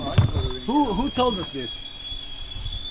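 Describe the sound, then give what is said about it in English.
A boiling kettle's steady, high-pitched whistle holds unbroken for the whole moment while a person speaks briefly over it, followed by a couple of sharp clicks and knocks. “Oh, the kettle's boiling.”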